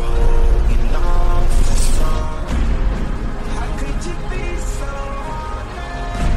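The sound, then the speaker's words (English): A bus rumbles along with a steady, loud low-end engine drone and road noise throughout, with muffled voices faintly audible inside the cabin. “Woman on a bus.”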